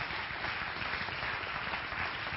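A crowd applauds steadily, dense overlapping claps forming a continuous, even wash of sound with no breaks and no voices over it.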